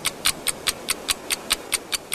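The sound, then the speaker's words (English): The Jack clock ticks rapidly and evenly after being activated when a buzzer sounded. There are about eleven crisp, bright clicks in just over two seconds, heard alone over a faint low background hum with no talking. “The moment the buzzer sounded, the clock began ticking.”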